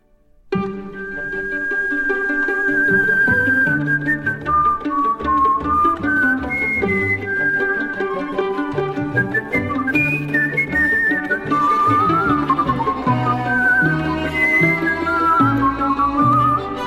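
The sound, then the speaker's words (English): A person whistles a song, the clear melody gliding and trilling between notes over a steady instrumental backing, loud and continuous throughout. “It's the sort of climax of the movie where the sort of meek star of the film stands up and does something for the talent show where he whistles.”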